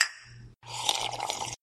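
Glasses of room-temperature whiskey clink together in a toast: a bright ringing chime fades, then a short, dense burst of clattering glassware and handling noise follows, with no voices.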